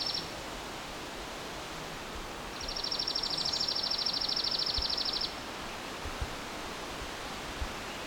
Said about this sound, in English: So how's this a chipping sparrow? It's not as soft sounding as pine warbler will. Pine warbler will fade in and fade out in volume. So this bird has switched to being in the pine tree now, making things more confusing.